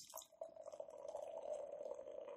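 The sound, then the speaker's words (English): Beer pours steadily from a 12-ounce can into a glass, a continuous gurgling stream whose pitch creeps upward as the glass fills, with no one speaking over it. “Okay, so now we're back to 12-ounce can for number 10. And this looks like it should be relatively easy to pour.”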